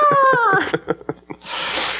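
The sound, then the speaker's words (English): A man imitates a cat: a drawn-out, falling meow-like wail, then a few short choppy vocal bursts, ending in a sustained breathy hiss. “He's making cat sounds and like doing the claw motions.”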